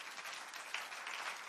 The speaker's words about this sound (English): Clap for Jesus.